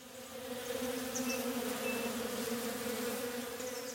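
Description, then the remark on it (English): A dense, steady drone of many bees buzzing together around a beehive in a forest, continuous for the whole stretch, with a few faint brief chirps above the hum and no voices. “He went and sat next to a beehive.”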